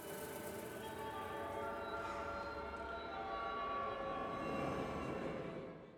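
A train rumbles steadily along the track, loud, with a droning tonal whine like a horn or wheel squeal riding over the clatter, easing off at the very end.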